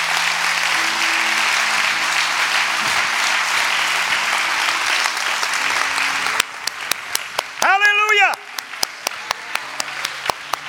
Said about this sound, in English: That's about all I got. Clap your hands for the word tonight.